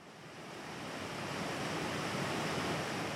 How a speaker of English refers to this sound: Water flowing at Whetstone Brook by the Main Street Bridge in Brattleboro in southeast Vermont as the Green Mountains rise gracefully in the distance.